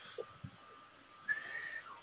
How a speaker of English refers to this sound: A shrill whistle pierces the night, and you hear, "Halt! Police!"